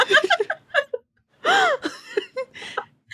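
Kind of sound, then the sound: human body sound, dramatic gasp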